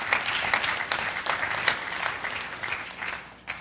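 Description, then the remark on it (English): An audience claps steadily, the dense applause of many hands holding at a fairly even level before tapering off slightly near the end, with no one speaking over it. “And so many, yeah, you can clap for that.”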